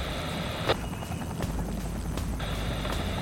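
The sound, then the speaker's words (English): A helicopter drones steadily and loudly overhead, its rotor noise dense and constant, with periodic sharper blade thumps cutting through the roar. No one speaks. “You keep those choppers back, way back, and I won't start blowing every damn one of them out of the sky.”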